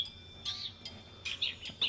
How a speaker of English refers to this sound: The bird is chirping.